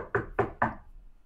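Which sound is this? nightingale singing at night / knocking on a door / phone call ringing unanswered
knocking on a door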